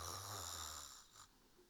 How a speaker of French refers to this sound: Ensuite, il a avalé deux jattes de lait, a rôté et puis s'est écroulé sur le sol et s'est mis à ronfler.